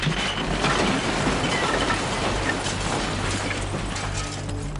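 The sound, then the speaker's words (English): A loud, continuous rumbling roar of the eight-story Rana Plaza building collapsing during morning rush hour on April 24, 2013, with dense crashing and crumbling debris throughout, steady with no pauses and no voices. “An eight-story building collapsed today, killing at least 145 people.”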